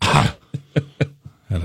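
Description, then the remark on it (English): A harsh burst of coughing: one longer rough cough, then several short sharp coughs in quick succession, and a final heavier cough to finish. “I got a cough.”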